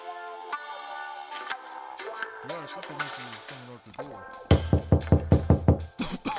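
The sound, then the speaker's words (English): A voice-filled stretch gives way to a quick run of about seven firm, evenly spaced, loud knocks on a door by a couple of people arriving, ending with a sharp final thump. “All right, so now I think I hear somebody at the door.”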